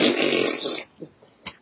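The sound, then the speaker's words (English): A loud, buzzing mouth-made fart imitation lasting nearly a second, followed by a couple of brief breathy sounds, alone with no other talk. “What if she can only fly by farting really loudly?”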